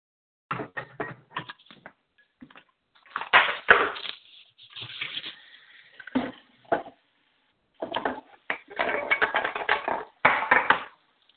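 Pots clang and clatter in irregular bursts of sharp knocks, some quick and rapid, others spaced out with short pauses between, at a moderate loudness with no talking.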